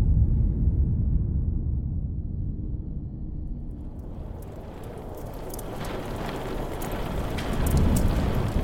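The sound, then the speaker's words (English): A deep, rolling rumble of thunder fills the opening seconds of a stormy night on a rocky shore, then steady, hissing rain pours in, loud, with the low storm rumble swelling again near the end. No voices. “It was a stormy night on the rocky shores of the Watchman's Peninsula.”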